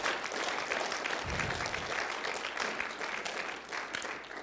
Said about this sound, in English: Go ahead and give the Lord a round of applause.